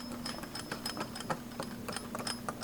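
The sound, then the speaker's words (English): A rapid, uneven run of small mechanical clicks as the big spinning combination dial of a vault door in the basement of the state archives in Raleigh is spun, heard over a steady low hum, with no voices. “Seriously, that vault has one of those big spinning dials on it.”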